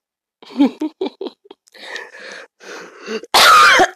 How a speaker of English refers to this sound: Ooh, I hate my cough. I hate it with a passion.